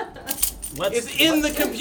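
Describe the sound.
Car keys on a fob jangle in a few quick, bright metallic shakes, followed by a voice speaking over the tail of the rattling.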